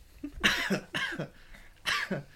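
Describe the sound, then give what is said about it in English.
A hacking coughing fit caused by eating an almond: three harsh, throaty bursts in quick succession, each breaking into a couple of rough spasms, loud and alone with no talking. “That almond's making me cough.”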